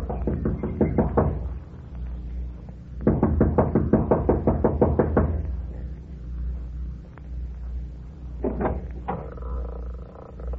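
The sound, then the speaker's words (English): Rapid, insistent knocking on the wooden front door of a small mountain lodge, as a young woman knocks impatiently, comes in urgent bursts: a quick flurry, a pause, then a longer volley and a final short rap, fairly loud over a low background rumble. “runs up the steps of the lodge to the front door. She knocks impatiently, looking above anxiously.”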